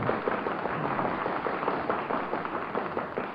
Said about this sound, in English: Well, that sounds like some paper burning.